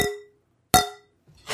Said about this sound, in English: I guess a pint glass and a wine glass do not cheers well together. Yeah, the wine glasses don't cheers well without other wine glasses, apparently. That's really weird. That was a really obnoxious, gross sound.